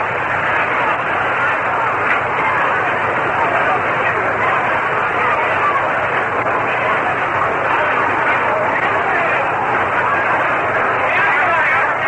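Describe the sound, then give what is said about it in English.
A ballpark crowd at a Mets baseball game roars for a grandstand fan who made a good play on a foul ball, a loud, steady wash of cheering and shouting that holds for the whole stretch with no pauses, sounding slightly muffled and thin at the top end. “And you can hear the roar of the crowd for one of the grandstand outfielders who made a good play, obviously.”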